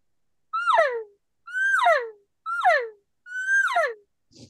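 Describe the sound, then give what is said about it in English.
Four evenly spaced elk cow calls blown on a thick 0.4 latex diaphragm call made for bugling, each a loud, nasal mew that rises briefly then slides downward with a twangy, strained edge, with no talking. “So if you try doing a cow call on this one, it's a lot harder because it's made to bugle.”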